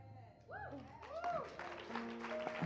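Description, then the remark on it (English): An audience claps in a dense, steady patter that grows fuller after the first second, with sliding, sustained tones humming underneath. “This clapping is not for Jesus.”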